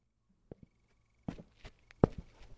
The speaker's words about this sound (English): The man's boot heels rhythmically thumped the pavement.